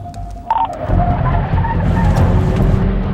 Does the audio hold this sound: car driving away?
yes